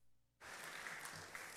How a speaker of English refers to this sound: Let's give the Lord a hand clap of praise for how much he loves us.